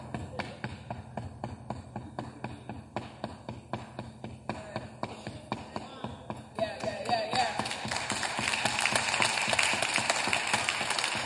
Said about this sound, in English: Knocking.